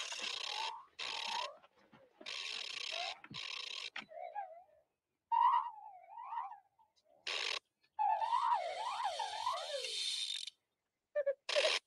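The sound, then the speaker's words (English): A golden mechanical owl named Bubo chatters in bursts of rapid clicks and ratcheting whirs, broken by warbling, wheezy whistles that rise and fall in pitch, loud and alone with brief pauses between phrases. “Do you understand all those clicks and wheezes?”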